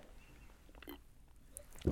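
A quiet sip from a drink: faint wet mouth sounds and a soft swallow over near-silence, ending in a brief louder thump or click.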